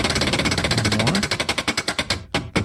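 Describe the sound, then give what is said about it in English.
A spinning prize wheel clatters with rapid, sharp clicks that start fast and even, then gradually slow and spread apart as the wheel winds down to a stop. “Well, let's spin that wheel.”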